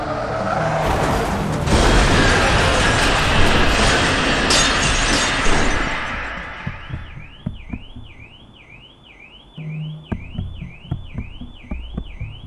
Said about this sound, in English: I'm dazed, hardly conscious as the figure from the other car that's just smashed into me approaches.